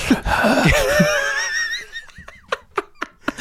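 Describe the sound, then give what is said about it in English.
Heavy breathing heard over a phone line: wheezy, voiced exhales at first, then a series of short, sharp breathy gasps in a quick, uneven rhythm. “I can hear breathing.”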